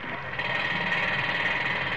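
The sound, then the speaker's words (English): Pneumatic drills clatter without a break at a construction site where men work with drills, shovels and wheelbarrows: a dense, steady mechanical rattle with a harsh high-pitched buzz over a low rumble. The noise holds an even, loud level throughout, and no one speaks. “Men covered it like ants, working with pneumatic drills, shovels, wheelbarrows.”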